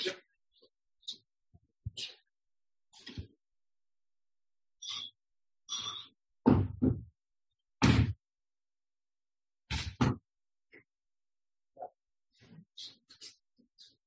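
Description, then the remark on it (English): Several heavy thuds and bangs of a door knocking about in the rising wind and then being shut, separated by quiet pauses, with faint shuffling and breathy rustles between them. “I've got to shut the door because the wind is coming up and it's banging the door.”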